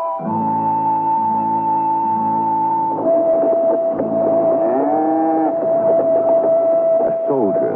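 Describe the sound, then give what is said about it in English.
A reluctant steer, pulled by a soldier across a desolate Wyoming plain on a raw, bitter day in 1868, lows in long, drawn-out moans, one rising and bending near the middle, over a steady sustained tone that runs through the whole stretch. “Behind him, the soldier pulls a reluctant steer.”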